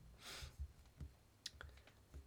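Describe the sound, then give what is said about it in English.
Quiet typing on a computer keyboard to look up who plays Paulie the parrot, with a handful of soft, irregular key clicks tapping out over a couple of seconds. No one speaks. “I'm going to clickety-clack again on my keyboard to find out who plays Paulie the parrot.”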